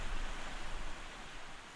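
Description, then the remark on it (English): Steady rain hisses evenly across the whole clip, a dense wash of noise with no distinct drops standing out, slightly fuller in the first second before settling. No one speaks. “I don't get why we had to come out when it's raining.”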